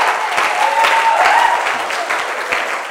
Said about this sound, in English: You may be seated with a clap offering. Somebody was trying to clap for Jesus.